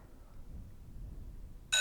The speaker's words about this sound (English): Yeah. Recess? Yeah. Just the bell gives it away.